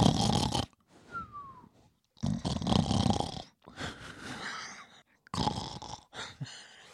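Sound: person imitating snoring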